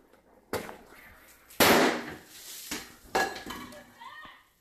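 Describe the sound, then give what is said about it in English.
A quick series of four sharp, loud firecracker bangs, the second the biggest, each followed by a brief metallic clatter and ringing decay, from a firecracker lit and put in a pot inside a house. “Firecracker.”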